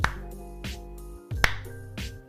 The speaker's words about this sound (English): No, let me do a bigger clap. There we go, bigger clap.